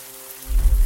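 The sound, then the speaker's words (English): Heavy rain falls in a steady, hissing wash, and a deep low rumble swells in partway through the short stretch. No voices are present. “The rain was coming down harder.”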